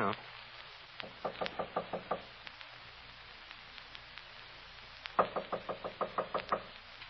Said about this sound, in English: I'll knock. Oh, the door's open.